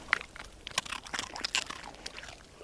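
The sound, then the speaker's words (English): A pet named Euro crunches a biscuit, a quick run of sharp, irregular crackling bites spread over a couple of seconds with no talking. “Give him a biscuit. You can hear the famous crunch.”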